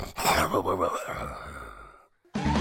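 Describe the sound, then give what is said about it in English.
A voice imitates the snore of a Pangoro, a Pokémon, as a door slowly closes: one long, raspy, breathy rumble, fairly loud, that fades out after about two seconds before a short silence and another sound begins. “the door slowly closes with the snore of a Pangoro.”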